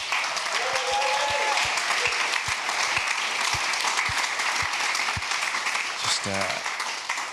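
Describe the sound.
A crowd at a Christian gathering applauds two people for sharing their testimony, with dense, sustained clapping throughout, a few brief vocal sounds and a short voice cutting through near the end.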